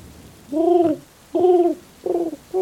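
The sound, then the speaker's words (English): A voice imitates a pigeon's cooing with four throaty, warbling coos in quick succession, each rising and falling. The coos are moderately loud, with no other talking. “One sound effect I can do. It's a pigeon.”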